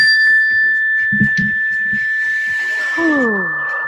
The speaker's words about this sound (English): So when you hear the mindfulness bell, let's just stop and take a slow, deep breath.